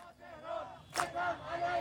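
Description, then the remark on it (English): A large street crowd of protesters in Iran's capital city shouts together in sustained, chant-like cries in Farsi while clapping, with a sharp burst of clapping or impact noise cutting through midway. The voices are loud and continuous across the short stretch. “People out on the streets of the capital city, clapping and shouting in Farsi, from Kurdistan to Iran, oppression against women.”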